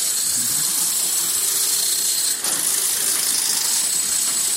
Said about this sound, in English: How funny is that? It's like, because I knew, we have that vision, but I didn't think it was literally jackhammers.